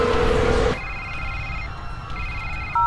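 A telephone at Dane Industries rings in steady electronic tone bursts, two rings separated by a short pause, following a brief stretch of loud, rumbling noise at the start. No one speaks.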